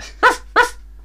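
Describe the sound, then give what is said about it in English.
A person imitates a dog with two short, loud barks in quick succession, with a brief pause between them and no other talking. “I mean, what are dogs, woof, really? Woof, woof, woof.”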